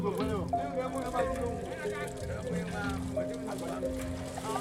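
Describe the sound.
Small engine fishing boats hum steadily on a lagoon at the edge of Nigeria's most populous city in darkness while several fishermen chat as they submerge branches to trap fish, their voices overlapping the low, continuous motor drone.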